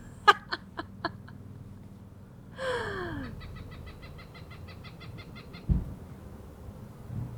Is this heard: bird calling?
yes